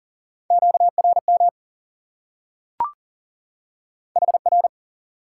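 Fast Morse code at 40 words per minute sending QSO elements: a steady, mid-pitched tone keyed in quick dits and dahs, two short bursts separated by a pause with a single sharp click.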